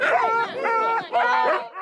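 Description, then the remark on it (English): A young sled dog pup named Steven yelps and barks excitedly while jumping up and down on his front two paws, ready to go, three close, loud bursts in quick succession with rising and falling pitch, somewhat like a sea lion's bark. “He was jumping up and down with his front two paws and emitting a sound that was reminiscent of a sea lion.”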